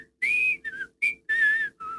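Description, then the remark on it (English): Someone whistles a short, lilting tune, several clear pitched notes rising and dipping in quick phrases with brief gaps between them, no talking. “Ganesha sat back, and he whistled a little tune.”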